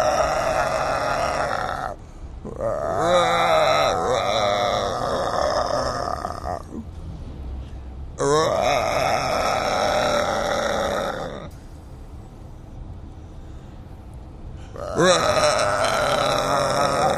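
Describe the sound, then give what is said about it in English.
A person imitates whale squeals with four long, loud, warbling vocal wails, their pitch wavering and sliding, separated by brief pauses. “If you enjoy the squaling portion of the show, please hit us up on social media at Cashing In With TJ.”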